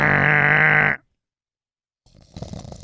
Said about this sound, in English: I couldn't stop yawning.